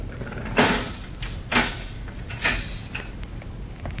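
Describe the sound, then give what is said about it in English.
A uniformed guard unlocking a heavy steel cell door: three loud metallic clunks about a second apart, then a few lighter clicks and rattles, with no voices. “The guard unlocks the heavy steel door.”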